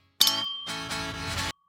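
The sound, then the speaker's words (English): Drink containers clink together in a toast, a couple of bright impacts whose high ringing tone lingers for about a second before cutting off. No one speaks. “But first, grab your favorite drink. Cheers!”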